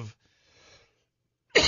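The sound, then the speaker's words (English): A sharp, loud cough bursts out, preceded by a shorter cough and a brief stretch of faint, muffled noise. “I have that cough.”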